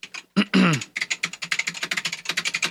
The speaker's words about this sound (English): See, I hear all of that. I hear all your mechanical keyboard typing.